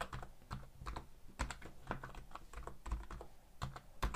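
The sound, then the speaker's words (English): Quick, irregular clicking of keys on a computer keyboard as a short password is typed to log in with Wella Health credentials, with small pauses between bursts of keystrokes and no talking. “So login with your Wella Health credentials. So I hope this really works. So let me just try this. My password.”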